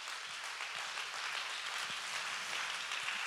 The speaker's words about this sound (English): Why don't we just go ahead and clap our hands if you believe that?